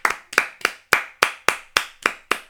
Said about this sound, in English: Can we give a round of applause to …? Yay!